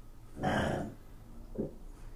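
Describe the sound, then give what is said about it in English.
A female dog named Winnie, having heard somebody outside, lets out a loud, drawn-out bark, followed about a second later by a shorter, softer bark, with no one talking. “What are you barking at, Winnie? Somebody outside?”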